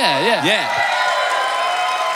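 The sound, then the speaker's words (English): An audience applauds in a steady, dense wash of clapping that lasts the whole stretch, opening with a voice whooping in quick rising and falling swoops over the crowd. “It would have been funny if you came out while they were applauding and then just left.”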